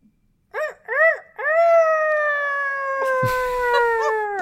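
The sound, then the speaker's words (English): Someone mimics a rooster crow with their voice: two short arched syllables followed by one long, loud, held note that slowly sinks in pitch, with a brief scuffing noise near the end. “I don't have any sort of other reference for roosters, so...”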